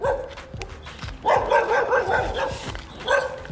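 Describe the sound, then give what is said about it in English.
A dog barks several times in quick bursts, loud, over an outdoor street background with soft footsteps of people walking along the street, and no one speaking. “we got a dog.”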